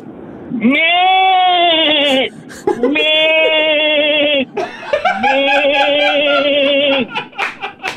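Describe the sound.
A man's voice imitates a goat, letting out three long, loud wavering bleats in a row with short gaps between them.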